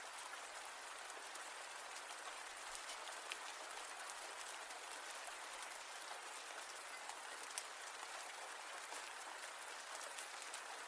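Steady rain falls without pause, a dense hiss of countless drops with faint scattered pattering, even in loudness throughout and no voices present.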